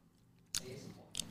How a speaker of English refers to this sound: Apologies for everyone who's getting that ASMR fucking chewing of biltong in the rear, but...